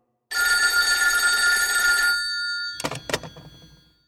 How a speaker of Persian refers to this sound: ساعت 5 صبح به من تلفن زدن، پریدم پای تلفن.